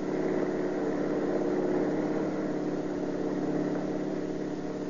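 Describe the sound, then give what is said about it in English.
A car engine runs hard and continuously during a chase at over 70 miles per hour, a steady drone with a constant low hum and no voices. “We're doing over 70 and he's walking away from it.”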